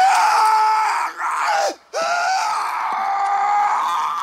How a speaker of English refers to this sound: scream